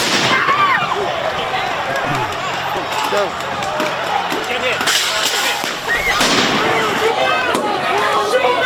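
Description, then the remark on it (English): Fireworks thrown by people bang repeatedly in a street where fires are burning, with several sharp, loud bursts at irregular intervals over a dense backdrop of shouting crowd noise and whistling sounds. “There are people throwing fireworks and who knows what else.”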